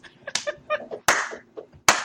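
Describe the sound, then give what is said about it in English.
Two sharp, loud hand claps about a second apart, following brief voiced sounds from a person at the start; the person is clapping for themselves. “Don't clap for yourself.”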